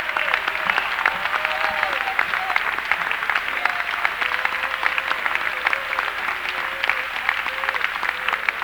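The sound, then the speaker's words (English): A church audience claps for the Lord during a service in a steady, dense wash of hand claps, loud and sustained throughout, with a few faint voices calling out beneath the applause. “Oh, let's give the Lord a hand clap tonight.”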